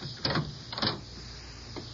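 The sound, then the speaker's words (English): A door being opened: two short, clunky rattles of latch and handle about half a second apart, then a faint soft bump, all over a steady low hum with no voices. “I can let myself in, but I'd rather you open the door.”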